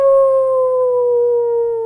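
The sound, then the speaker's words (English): A person imitates a wolf howl, one long sustained tone held steady for about two seconds, loud, slowly sinking slightly in pitch. “I was just howling like a wolf.”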